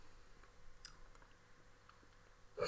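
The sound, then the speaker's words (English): Quiet chewing of a Trevor Peppermint soft mint: faint moist clicks and squishes scattered irregularly over a couple of seconds, ending in a short louder burst of noise. “I'm fucking chewing as fast as I can.”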